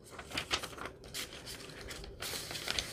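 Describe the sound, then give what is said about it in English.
Soft paper rustling and crinkling for a few seconds, with a couple of brighter crisp rustles as a flip-up paper flap in a decorated journal is flipped open to reveal extra writing space on coffee-dyed paper; no voices. “And here is another flip up.”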